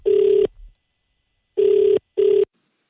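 A phone ringing tone heard on an outgoing call to a barber: steady electronic buzzing bursts in a double-ring pattern, clear, with brief silences between and no voices.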